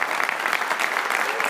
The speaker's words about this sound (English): Let's have a round of applause for DJ.